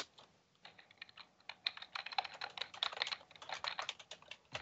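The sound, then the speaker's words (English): Rapid clicking of keys on a computer keyboard, a steady run of crisp taps with brief pauses, no voices. “Your typing is drowning”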